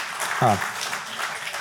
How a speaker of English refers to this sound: I didn't think I'd have claps after that, but okay.